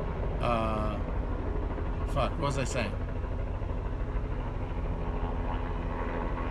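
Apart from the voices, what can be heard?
helicopter flying overhead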